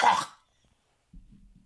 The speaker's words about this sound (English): Yeah, no, he's just coughing and he's already high when we started talking.